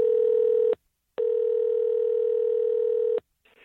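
A telephone ringback tone sounds loud, a short ring then a longer one after a brief pause, with a faint rustle just after the second ring ends.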